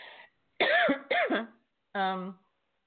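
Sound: cough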